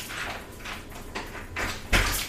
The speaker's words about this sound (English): Oh, thank you. She was struggling with the door.